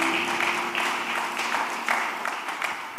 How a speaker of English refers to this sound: For the first time, I see a lot of the youth joining the main service. Let's appreciate them with a clap.